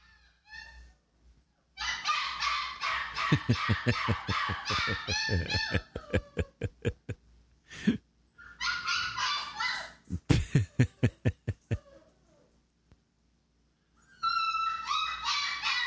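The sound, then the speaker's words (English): A puppy, heard when its owner comes home at lunch and walks in the door, whimpers in long, high-pitched whines, broken by quick runs of sharp, rapid yips and barks, then pauses briefly before whining again. “it's a puppy, so we have to try to get home at lunch to let the dog out”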